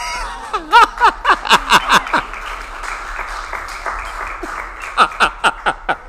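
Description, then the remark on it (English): Scattered hand claps from a church audience during a sermon: a quick burst of about eight sharp claps, a lull with faint murmuring, then a few more claps near the end. “Is that the only clap I can?”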